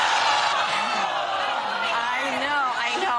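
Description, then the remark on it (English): A studio audience reacts all at once as Sara Gilbert announces she is leaving the show: a dense, sustained wash of overlapping voices, cries and murmurs, loud throughout with rising and falling exclamations. “Listen to how the crowd reacts.”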